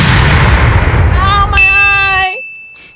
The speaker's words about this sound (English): Retire that, but we're keeping the cannon. Yes. Okay. We are keeping the cannon. Incoming!